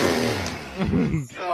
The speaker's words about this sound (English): That was a massive ass fart.